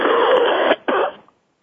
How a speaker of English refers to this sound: one second, I've coughed. That's okay. Sorry, I'm getting over the flu.